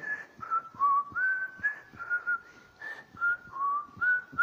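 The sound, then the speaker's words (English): A person whistles a relaxed, wandering tune, the clear notes sliding up and down in a steady, unhurried melody, fairly loud with faint background noise and no talking. “You know, when someone is very comfortable, they blow their whistle.”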